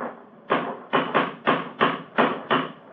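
A cane strikes a stone bridge parapet again and again, about seven hard knocks in an uneven rhythm, each with a short ringing decay and no voices.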